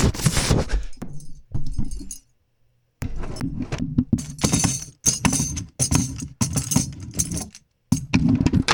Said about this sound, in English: It always starts with someone announcing what it is, so I'm gonna do my best impression of a Freesound silverware drawer. Silverware in my kitchen.